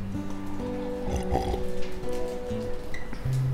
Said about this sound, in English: I'm going to just take a sip of water, sorry.